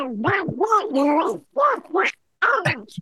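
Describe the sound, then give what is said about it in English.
A voice imitates Donald Duck, pushing out a run of raspy, nasal quacking syllables in three quick bursts separated by short pauses, fairly loud. “I think that's probably better than the being introduced in the Donald Duck voice.”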